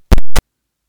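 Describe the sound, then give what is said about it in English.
Two sharp, loud ticks in quick succession, a clock's tick-tock, followed by silence. “Clock's ticking.”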